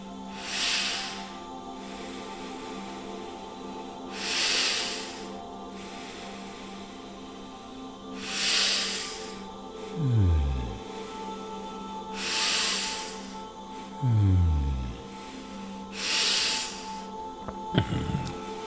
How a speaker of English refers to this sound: Keep on breathing.